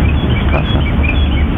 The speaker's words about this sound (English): Now, with this one, they shot this outside at a cemetery. And so there's what I believe to be birds chirping in the background. But there's a voice that speaks over the birds chirping.